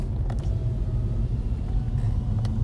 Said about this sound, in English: Okay, I'm back at the library. There's so many cars here. For the library not being open today, I don't really understand why there's so many cars here.